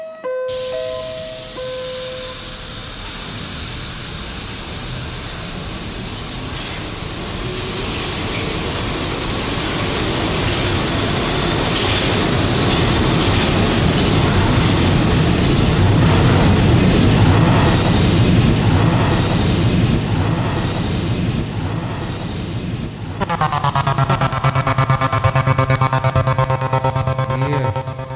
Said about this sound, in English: A Brooklyn-bound 3 Express train. The next and last stop is New Lots Avenue.